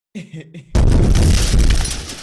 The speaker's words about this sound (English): that was a bazooka.